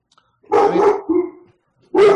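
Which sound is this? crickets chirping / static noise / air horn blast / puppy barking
puppy barking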